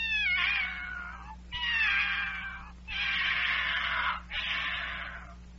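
A cat meows four times in a row, long drawn-out wailing calls separated by brief pauses, with a faint steady hum underneath.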